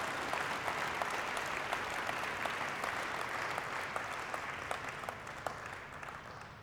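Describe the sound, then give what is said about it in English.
An audience claps steadily for several seconds, a dense wash of many hands with sharp individual claps popping out, holding strong before easing off slightly toward the end. “And can we just give them a round of applause as well in terms of all that's been done.”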